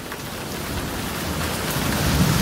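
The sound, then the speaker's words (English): Steady, dense rain pours down with a low rolling rumble of thunder building underneath, growing heavier toward the end. No voices, just the continuous wash of a storm. “Consumed with their bleak fate, the disciples plead, "Who can calm the storm?”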